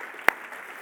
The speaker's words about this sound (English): Would you please give a round of applause for Jesus Christ in Grace Kids? Come on.